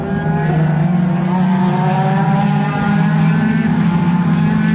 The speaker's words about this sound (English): And here come the Porsches, the 911s. They sound like an angry team of wasps.